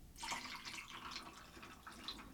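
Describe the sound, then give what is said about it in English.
Pineapple juice pours steadily into a mixing glass, a continuous splashing trickle lasting a couple of seconds with no talking. “I don't know how much I just poured in, but I just added some pineapple juice.”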